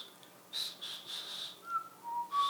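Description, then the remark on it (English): Someone still learning to whistle attempts it: mostly airy, breathy blowing in uneven puffs, with a few thin, wavering whistle tones breaking through briefly near the end. Fairly quiet, no talking. “Yeah, I'm not there yet, but I couldn't even make a whistling sound.”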